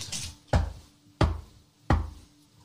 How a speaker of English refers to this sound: And drop, that's a knock, drop my yeah. stuff all over the floor.